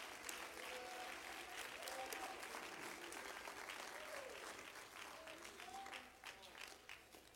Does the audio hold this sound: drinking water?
no